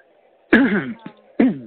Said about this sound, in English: You sound so sexy as you cough. You sound sexy.